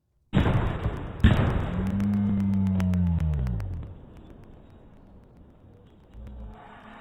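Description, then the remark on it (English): In a video recording, a string of sharp gunshots from another location cracks out in quick succession over a heavy, rumbling background with a low droning tone, preceded by two louder bangs near the start. “Those are gunshots in another place.”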